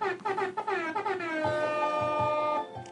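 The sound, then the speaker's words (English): A loud air horn sound effect from a soundboard blares in a quick series of short, brassy blasts that slide slightly in pitch, then holds one long sustained honk before cutting off. “What I'll do is I'll give y'all some air horns, though.”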